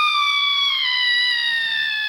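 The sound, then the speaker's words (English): A loud, shrill Aztec death whistle scream holds one steady, piercing tone for about two seconds, its pitch sliding slightly downward, with a faint breathy rasp creeping in toward the end. “Aztec Death Whistle”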